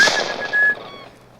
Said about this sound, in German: Hat jemand auf Oskar geschossen? Oh mein Gott, Oskar!